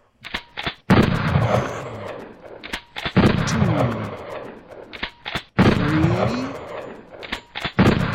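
A burst of gunshots from marksmen at a turkey shoot: sharp cracks in quick succession, then three loud roaring blasts, each trailing off over a second or two, with more scattered shots between. No one speaks.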